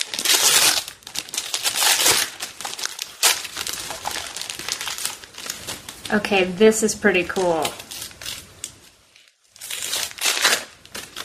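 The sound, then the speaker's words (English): Loud crinkling of packaging as a package holding a sparkly glass bottle is unwrapped, with bursts of rustling and tearing that come and go, pausing briefly while a person speaks before the crinkling resumes. “So I've got an interesting package here.”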